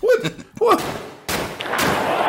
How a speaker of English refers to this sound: If you have five players come forward, then that means you got a fastball coming, and you hear somebody banging on the trash can as a batter.